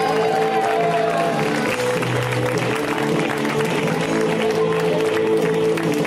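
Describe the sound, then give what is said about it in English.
A large audience at a comedy show claps and cheers steadily for a comedian being introduced, a dense, loud wash of applause that holds for several seconds, with upbeat music playing underneath. “But I like him a lot, and he has a newish baby, so extra newish baby applause, right?”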